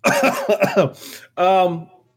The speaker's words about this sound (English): Oh, sorry. I literally started coughing.